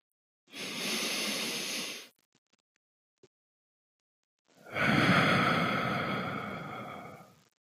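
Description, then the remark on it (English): Two long, deep breaths: a slow inhale of about one and a half seconds, a quiet pause, then a longer, fuller exhale lasting nearly three seconds. “I want you to breathe, and I want you to breathe deeply.”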